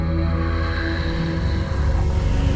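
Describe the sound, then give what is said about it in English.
A boat engine drones steadily, its low rumbling hum continuous over the wash of water, with no voices. “Did you send this boat to come get me?”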